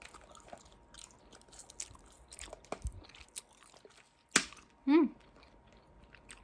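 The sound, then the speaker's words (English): Dry crunching and chewing with scattered sharp crackles as ice cubes from a container are bitten, then a loud snap followed by a short tonal vocal sound. “Human ice is good. Human ice is really good.”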